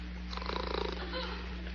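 A single raspy snore rattles for under a second, then fades, over a steady low electrical hum.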